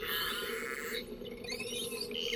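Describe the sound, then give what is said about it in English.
Underwater whale calls: layered, sweeping tonal whistles and moans that rise and fall continuously over a steady rumbling hum, fairly loud and with no talking. “Migrating whales rely on sounds like these to help navigate and hunt.”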